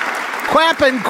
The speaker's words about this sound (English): All right, so, yeah, let's make some more clapping. Clap all over the place.